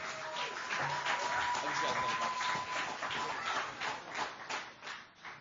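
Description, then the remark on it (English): A church audience applauds steadily to welcome two men, a dense crackle of many hands clapping at once, loud for several seconds before it thins out into scattered claps at the end. “So, welcome these two fine gentlemen with a hearty applause, please.”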